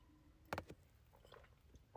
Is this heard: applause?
no